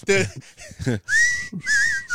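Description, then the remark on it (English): A person whistles a short melody from the film Kill Bill, clear and steady. Brief talking comes first, then the tune follows in two sustained, wavering phrases. “Every time I was like, oh. I still be whistling.”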